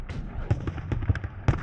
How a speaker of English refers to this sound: When Confederate preparatory fires commenced, it initiated a duel between Union and Confederate cannons, which created the largest artillery barrage in the history of the Western Hemisphere.